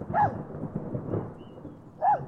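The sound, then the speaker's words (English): Thunder rumbles low and steady through a storm, with two sharper, louder bursts near the start and end breaking over the rolling background. No one speaks. “Thought I saw somebody in the lightning.”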